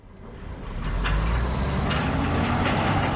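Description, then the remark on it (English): A heavy truck engine rumbles steadily outdoors while logs are loaded onto logging trucks at a timber company in Kamiah, Idaho, with a few sharp knocks and clanks cutting through the low, continuous mechanical drone. “As logs are loaded onto trucks behind us, He explains.”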